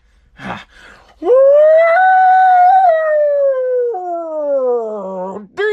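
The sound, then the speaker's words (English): A single voice imitates a siren for a 'douchebaggery alert' segment, with one loud, sustained wail, rising to a steady high pitch, holding, then sliding lower and dropping off after several seconds. A short breathy sound precedes it. “Do I really have to do the siren again?”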